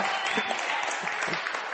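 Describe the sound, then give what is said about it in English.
A church audience claps together in steady, dense applause for an intern from Costa Rica who will return to preach next week, a continuous crackle of many hands at even loudness throughout with no voices standing out. “Okay, you can clap for him now, but when he gets here, you should boo him or something, you know.”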